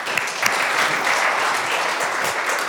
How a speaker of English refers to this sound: I haven't talked yet, so don't clap too much.